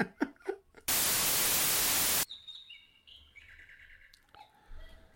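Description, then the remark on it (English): A burst of loud hissing static gives way to a cuckoo clock calling, its high, whistly bird-like notes chirping in short runs at moderate volume, with no talking. “You're the only person in the country who still has a cuckoo clock.”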